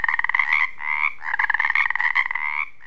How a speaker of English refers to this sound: These calls might sound the same, but to the female tree frog, she can sort through as many as 8 different calls at once as she zeroes in on a partner.